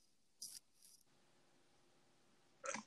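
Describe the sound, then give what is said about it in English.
A single short, sharp sneeze bursts out near the end, preceded by two brief, faint hissy breaths, with no talking. “I fucking sneezed.”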